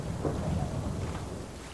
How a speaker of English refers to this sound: And then we arrive in the storm. Thunder and lightning crash and boom around us.